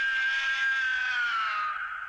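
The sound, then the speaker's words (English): A sustained, high-pitched kaiju monster roar, shrill and slightly descending over about two seconds, loud and steady with a reverberant tail and no talking. “Yeah, you know, you kind of, it's that high pitch. Yeah. I think that works. There's that little bit of a reverb in there, like that kind of almost makes it sound, you know, I just alien.”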